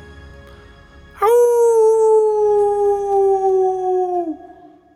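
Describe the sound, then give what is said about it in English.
A man lets out a single long, loud wolf-like howl, holding a steady note for about three seconds before it drops slightly in pitch and fades out. Nobody speaks. “He starts howling.”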